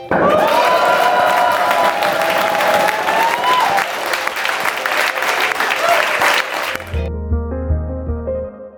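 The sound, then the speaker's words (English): A loud, dense burst of applause, cheering and shrill whistles from the live crowd at a Blockchain Insider Live show at Rocket Space in London rolls on for about seven seconds, then cuts abruptly into a short, low musical sting. “We have the crowd”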